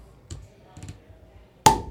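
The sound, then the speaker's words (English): A can of Rheingeist Science Fiction beer is cracked open: two small metallic clicks from the tab, then a sharp pop followed by a short fizzing hiss of escaping carbonation. “Do you want to open this one? No. This is Rheingeist Science Fiction. This has been in the bonus beer category.”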